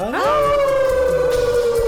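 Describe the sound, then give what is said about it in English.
Several people howl like dogs together at the Moondog on a count of three, a loud wail that swoops upward and then holds a long, steady, siren-like note. “Now we all gonna howl at the Moondog on a count of three.”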